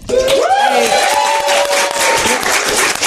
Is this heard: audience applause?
yes